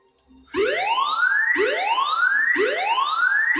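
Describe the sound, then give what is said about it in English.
A loud burglar alarm wails, its tone sweeping upward in repeated whoops about once a second, steady and insistent, with no voices over it. “Oh dear, I think we may have just tripped the burglar alarm there.”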